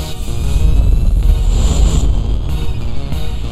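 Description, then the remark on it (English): A voice imitates Fred Flintstone's cartoon car, which he runs with his feet: a steady, rumbling engine-like sputter held loud for a few seconds, with no words. “When he's in car and his feet just go like this, right?”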